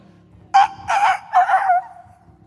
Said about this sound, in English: Can you hear the rooster crow? Some of you are receiving your call to a second chance, and you can hear the rooster crowing.